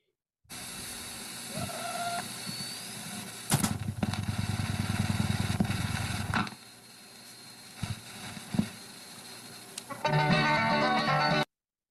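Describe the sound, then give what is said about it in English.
An 8-track tape player flips over to the next track: steady tape hiss, a loud mechanical rumble for a few seconds, a couple of sharp clunks, then bright hissy playback starts up again, with no talking. “Yes, the 8-track flipping over to the next track.”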